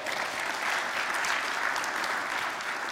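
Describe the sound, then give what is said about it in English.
Sustained applause from a sizable audience at a worship service, given for Sharon Aldridge as she stands, a dense, even wash of many hands clapping at steady volume throughout, with no voices standing out. “Give Sharon a big round of applause.”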